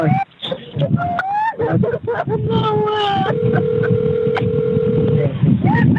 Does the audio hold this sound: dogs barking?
no